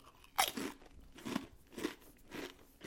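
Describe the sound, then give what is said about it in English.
A sharp bite into a crisp, spicy 7-layer-dip flavored chip, followed by several rhythmic crunchy chews, each a bright crackling burst at a steady pace, with no talking. “So I'm gonna do a taste test here right on the show.”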